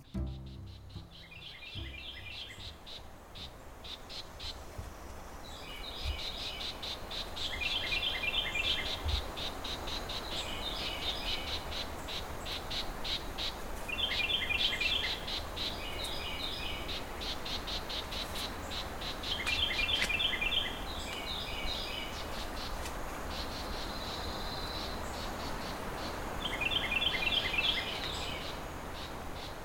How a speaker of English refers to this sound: But first, let's go to the woods.